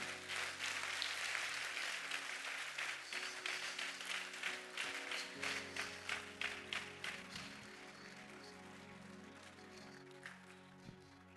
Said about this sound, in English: Let's be on our feet. Oh, clap well for Jesus.